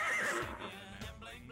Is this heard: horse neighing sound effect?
yes